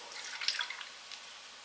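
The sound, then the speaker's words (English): Soft water sloshing and gurgling as a bong is pushed down into water, with a few small bubbly splashes near the start that settle into a quiet wash of liquid. No one speaks. “So what you wanna do is push it into the water.”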